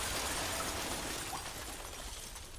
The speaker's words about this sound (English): you hear a explosion. And then you hear rocks above your head tumble down as the fountain collapses.